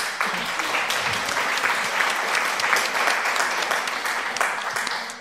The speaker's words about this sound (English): So they were applauding.